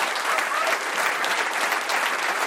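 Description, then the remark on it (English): Sustained applause from a live show audience for guest Judd Apatow, continuing for the next guest Chris Gethard, a dense, steady wash of many hands clapping at an even loudness throughout, with no voices standing out. “Let's keep this applause going.”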